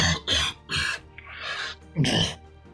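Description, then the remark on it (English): A loud fit of coughing from a man who is not feeling well: four or five harsh, rough bursts in quick succession, with a raspier, drawn-out hack partway through and no talking in between. “What's bad cough you got there?”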